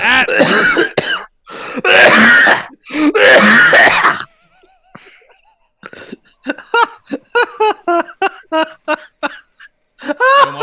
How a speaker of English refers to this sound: So much for that cough being better. Yeah, the cough came back, man.